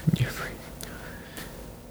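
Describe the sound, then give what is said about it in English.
Heavy breathing through the nose right into the microphone: a few soft low thumps, then two airy, hissing breaths that rise and fade, with no speech. “You're breathing too heavy into the mic. Your nose.”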